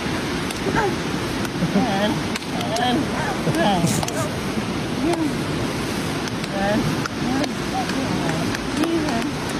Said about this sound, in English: Ultimately, you know, good for deaf people to have a church to call their own, I guess. Here they are outside, clapping, singing.